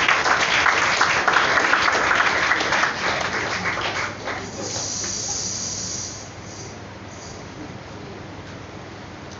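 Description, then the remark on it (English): A crowd claps loudly in a dense burst of applause for a few seconds, then the clapping thins out and fades into a softer, hissy background. “You are not clapping your hand. Come on now.”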